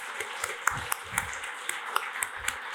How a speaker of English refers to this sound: Can you guys all stand up so we can applaud you for being the early movers in this ecosystem?